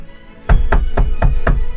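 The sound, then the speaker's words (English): Four firm, evenly spaced knocks on a wooden door, loud, each a deep thud with a sharp crack, coming after a brief near-silence. “I had barely made up my mind to help when the door knocked.”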